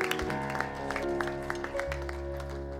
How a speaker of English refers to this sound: And then also the 29th is going to be Pastor Appreciation Sunday. If we could all give a hand clap for our pastor and pastor's wife.